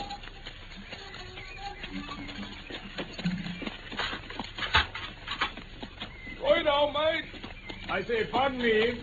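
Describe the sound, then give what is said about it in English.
Hooves clip-clop in an irregular rhythm as a horse-drawn carriage draws near in a driveway, with a busy background and voices rising over the clatter toward the end. “I can see the carriage in the driveway now.”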